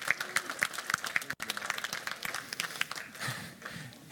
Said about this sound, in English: Guys, thank you so much. Thank you so much. Can you all go? Can everyone give a round of applause to our mess?